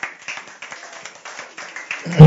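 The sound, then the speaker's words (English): A crowd claps for the man of God, a dense patter of many hands swelling in loose rhythmic waves, then a sudden loud, low thump cuts in at the very end. “Let's clap for the man of God.”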